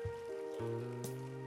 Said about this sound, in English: Now that you have clapped, let's all join our brothers and sisters.